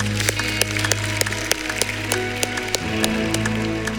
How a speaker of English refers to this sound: Can we give God a round of applause this morning?